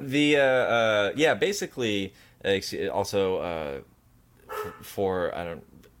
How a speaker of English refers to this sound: For those who haven't been acquainted with my dog, that's him barking in the background. I'm very sorry. He misses his other dad.